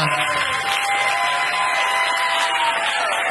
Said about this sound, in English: One more round of applause for all of my guests